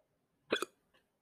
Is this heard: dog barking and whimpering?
no